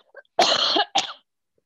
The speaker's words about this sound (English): Here's the dry cough.